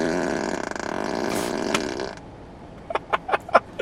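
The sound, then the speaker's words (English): A loud, drawn-out novelty fart sound effect from a Tesla car's fart mode, used in place of a bell, rumbles for about two seconds, then cuts off, followed by a few quiet clicks and taps. “We don't have a pre-war bell, so I'm using fart mode in Tesla.”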